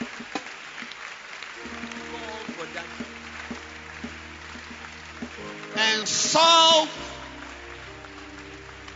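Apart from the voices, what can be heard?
audience clapping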